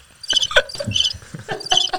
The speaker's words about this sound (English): You play the birds.